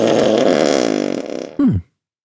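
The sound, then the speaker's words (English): A long, loud, buzzing fart rattles for over a second, its flutter slowing as it goes, then finishes with a brief squeaky downward squeal. No one speaks. “Everyone can enjoy a fart and a burp, can't they?”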